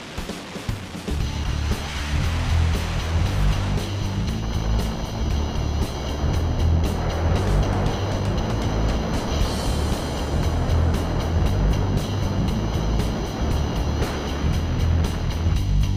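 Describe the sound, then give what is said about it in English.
A loud, steady engine drone inside the cabin of a small propeller plane in flight at 13,500 feet, carrying a skydiver before a jump: a low rumbling hum with a whooshing roar on top, from start to finish. “The plane is now at 13,500 feet.”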